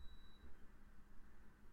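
A coffee pot gives a single faint, high electronic beep that fades after about half a second, leaving only a low background hum. Nobody speaks.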